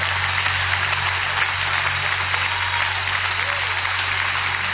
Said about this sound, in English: Clap your hands. I'm gonna need 13 of y'all. I'm gonna need 30 of y'all. I'm gonna need somebody to clap your hands.